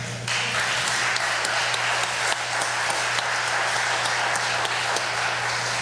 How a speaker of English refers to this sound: There's less of you out there, so you got to cheer extra loud for these, right? That's good. There we go. That's good.